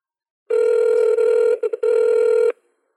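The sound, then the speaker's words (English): An outgoing phone call rings: a steady electronic ringback tone sounds for about two seconds, with a brief stutter partway through, then stops. Clear, with no talking. “Hold on, I gotta call”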